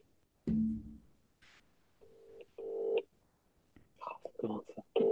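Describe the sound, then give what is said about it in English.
A phone call to a mobile number rings out over a speakerphone: a few steady, mid-pitched buzzing tone bursts with short gaps, followed by people talking. “Oh, he's going to answer and probably think something's wrong as well. Right, hold on. Speakerphone. Can you hear that?”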